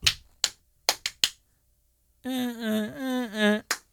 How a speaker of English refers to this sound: No rhythm? What the fuck was those claps? Were you with white people? No. I was on beat.